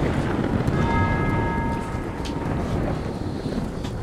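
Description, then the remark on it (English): A single church bell stroke rings out and slowly fades over a steady rush of wind and low rumbling outdoor noise. “Is that the Sabbath bell?”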